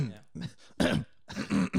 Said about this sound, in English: coughs every 5 seconds.